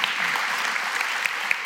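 An audience claps together, a dense, steady patter of many hands with a few sharper individual claps standing out, fairly loud and sustained with no voices over it.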